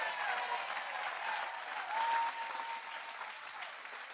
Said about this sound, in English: Are you with me today? Can I get a good amen? Would you give him a 10-second clap if you know that?